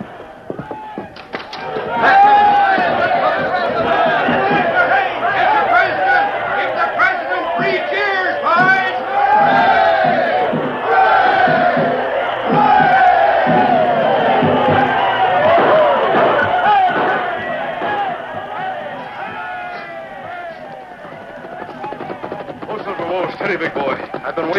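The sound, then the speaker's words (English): A large, happy crowd in Dodge City cheers and shouts continuously at night, many voices overlapping in a loud, steady roar that stays strong for the whole stretch and eases slightly toward the end. “Sure, but he ain't in this crowd.”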